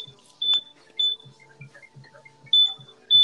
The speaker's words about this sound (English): That's a smoke detector.